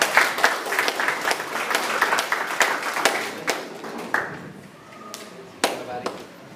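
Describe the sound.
An audience breaks into brisk, dense applause, many hands clapping at once, then it thins out toward the end with a few scattered claps and faint voices underneath.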